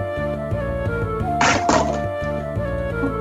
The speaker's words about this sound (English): So aggressive on your laptop. Stop rolling metal dice on your laptop. You have a tray.